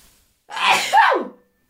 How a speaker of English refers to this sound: About to sneeze.